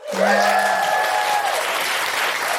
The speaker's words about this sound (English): Can I just give a big round of applause to everybody today who came, who asked a question or came and told us about their amazing feminist thing?